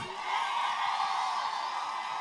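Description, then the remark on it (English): A steady wash of audience applause fills about two seconds, dense and fairly loud, with faint whoops and cheers mixed into the clapping and no talking. “We can't get a round of applause,”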